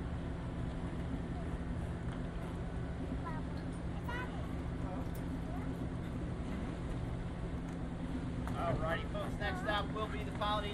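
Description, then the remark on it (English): A boat engine drones steadily on the water, a constant low rumble with a faint tonal hum, while indistinct voices chatter in the background near the end. “Private boat?”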